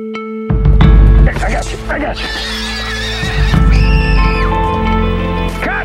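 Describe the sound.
A horse whinnies loudly, its shrill, wavering neigh rising above a busy background of stamping hooves and low rumbling movement, with voices in the mix.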